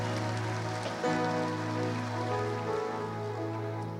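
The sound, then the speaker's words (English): A church audience applauds the men of the church in a dense, continuous wash of clapping that holds steady for several seconds, layered over a sustained low tonal hum, with no voices standing out. “Let's give the men a hand in our church.”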